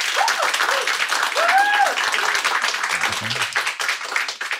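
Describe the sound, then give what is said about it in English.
An audience claps in a dense, steady burst of applause after a debate, voting yes that millennials will be left behind, with a few rising whoops or cheers ringing out above the clapping partway through. “So right now, clap if you think, yes, millennials will be left behind.”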